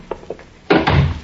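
A few soft taps, then a door swinging shut with a solid thud that rattles briefly before settling. No one speaks.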